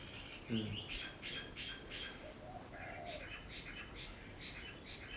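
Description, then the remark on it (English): Birds chirp and squawk steadily in the background, with a brief harsher call near the start and a continuous wash of faint tweets throughout, quiet. “The birds agree.”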